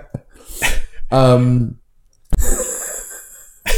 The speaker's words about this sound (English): No, look, and I think that's a great sneeze. Just a cheeky sneeze.